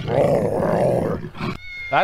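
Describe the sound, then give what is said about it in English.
A big cat's roar, like a jaguar's, gives a loud, rough, sustained growl for about a second, followed by brief higher squeaky tones and a short wavering call. “What's up with that cat sound? I mean, is that what a Jaguar sounds compared to a Panther?”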